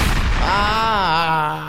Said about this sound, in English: I give you a gunshot.